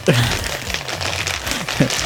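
The plastic packaging of an Eaglemoss Hero Collector Ecto-1 subscription set crinkles steadily into a microphone, a dense, crackly rustle of irregular snaps lasting about two seconds at moderate loudness, with a couple of brief vocal sounds mixed in.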